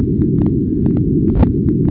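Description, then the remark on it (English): A gravitational wave chirp from two colliding black holes, recorded by an interferometer as space-time stretches and compresses: steady low rumbling noise, faint periodic ticks, and one brief, slightly louder thump about two-thirds of the way through. “That thump is the recording that the interferometer made of the space-time stretching and compressing as the gravitational wave passes.”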